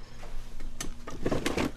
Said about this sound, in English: Right now, he's going through a set of old wooden drawers where customers can find all sorts of goods. The drawers, by the way, probably date back to the 1910s or 20s.